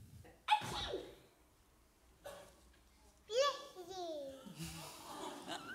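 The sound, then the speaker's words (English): A small child gives a sharp sneeze near the start, followed by high, sing-song child vocalizations and babbling. “When you sneeze, you say bless you to someone.”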